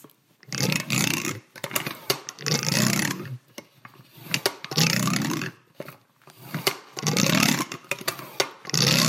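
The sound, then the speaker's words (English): A hand-cranked vacuum cleaner, kept in an 1800s mansion in Denver, working in loud, rhythmic bursts of rough, wheezing, grinding noise, each lasting about a second with short gaps between. No one speaks. “And there are items used by some of the women on the house staff, like a hand-cranked vacuum cleaner. It sounds a lot like indigestion.”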